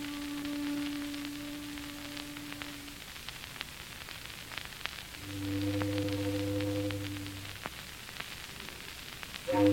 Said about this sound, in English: Foghorns always have to sound so mournful.